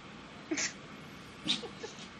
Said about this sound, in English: I am just cracking open the beer I picked up this week from a place in Western Connecticut. It's called Gelato Girl. Gelato IPA from Back East Brewing.